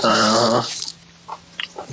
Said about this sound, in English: Dog, come down here snorting. What's wrong with you?